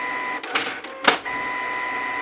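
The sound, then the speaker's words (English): A printer at work: a steady mechanical whine interrupted by two short, loud bursts of whirring and clatter, with no voices. “And then it crescendos and then it just title card and it just says printer.”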